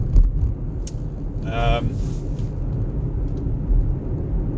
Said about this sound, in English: I mean, there are a few cars around.